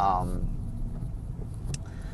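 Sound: car driving in traffic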